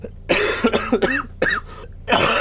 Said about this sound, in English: This is going to be just one of those kind of recording sessions, isn't it? And what kind is that? The one where I sit here and just sniffle and hack and...